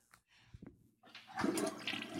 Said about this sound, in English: Oh, that was the worst flush ever. Bro. That's bad. That's what I'm saying. It actually is quite bad. It's a very weak flush.